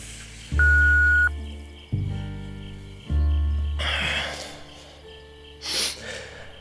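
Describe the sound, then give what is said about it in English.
A voicemail-style recording beep: three loud, buzzy electronic tones in a row, followed by a couple of soft, breathy huffs close to the microphone. “You may leave your report at your designated supervisor after the beep.”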